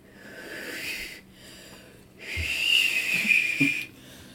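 Someone strains to whistle, producing two breathy, airy hisses with only a faint thin tone, the second longer and louder, separated by a brief pause. Fairly quiet.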